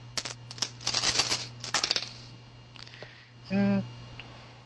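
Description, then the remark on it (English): A handful of nine six-sided dice rattling and clattering onto a hard surface in quick bursts of sharp clicks, followed by a brief hummed voice sound near the end. “Just get a handful and roll them.”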